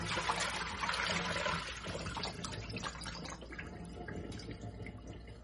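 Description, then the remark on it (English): Water pours out of a bowl holding a fish, tipped at the edge of a sink while a hand holds the fish in place; the fishy water makes a steady splashing rush for the first couple of seconds that eases into a softer trickle and scattered drips, with no talking. “I'm going to take it to the edge of my sink and I'm going to put my hand and hold the fish in place and tip and spill the water out slowly.”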